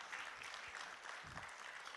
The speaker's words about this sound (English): Now that's worthy of clapping to the Lord. Amen.